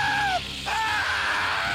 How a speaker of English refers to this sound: Also, his scream of terror once again does not inspire confidence.